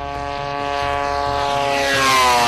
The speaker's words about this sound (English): What's the engine in this thing? The engine is a two-cycle snowmobile engine pushing an expensive payload through the sky, an expensive camera.